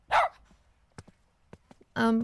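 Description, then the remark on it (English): A dog barks twice, a sharp loud bark at the start and a longer, more tonal one at the end, with faint tapping or footsteps in the quiet gap between. “Ma'am, I really need you to remove that dog.”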